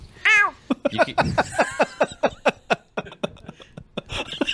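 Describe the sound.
A person gives a convincing imitation of a cat's meow, then breaks into a quick string of short, rhythmic vocal bursts, like chattering laughter, that fade toward the end.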